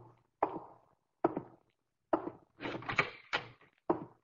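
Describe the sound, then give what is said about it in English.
A door opens as Pete comes in, with a string of sharp wooden clunks and thuds, spaced about every second, with a brief rattling cluster in the middle; no one speaks. “When he comes in, make with those baby blues and attract his attention for a minute. I'll be behind the door.”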